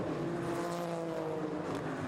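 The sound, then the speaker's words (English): A race car engine roars past during a race as one car passes its teammate heading down into turn 8 at the bottom of a hill, a loud, sustained high-revving drone with a buzzing harmonic whine that holds steady throughout, with no voices over it. “the Richard Westbrook car goes by his teammate down into turn number 8 at the bottom of the hill”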